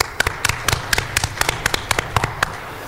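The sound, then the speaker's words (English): A small burst of audience applause from people who have seen an audio-described movie, television show or play: sharp, distinct claps land in a fairly steady rhythm, roughly four per second, over a low background murmur, with no one speaking. “How many of y'all, give me a round of applause if you've seen an audio described movie, television show, or play within the last year?”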